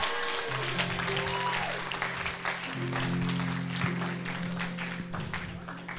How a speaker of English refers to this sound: Amen, somebody. Clap unto the Lord.